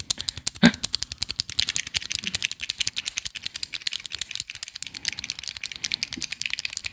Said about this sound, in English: Click, click. I hope it comes up on microphone. Maybe. Let's just click a bunch of pens and see if they come up on microphone.